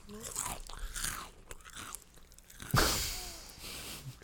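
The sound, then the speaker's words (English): Crunching on chips: a run of crisp, brittle bites and chewing crackles, loud at first and then again in a sharp burst near the end. “I mean, but, yo, shout-outs to your chips, though, man. Those chips are fucking slap-tacular.”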